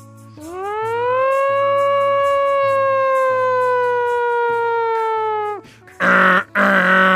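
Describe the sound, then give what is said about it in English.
A voice imitates a fire truck siren, holding a long rising then steady wailing tone for about five seconds, followed by a couple of short, loud bursts of vocal noise. “Fire truck?”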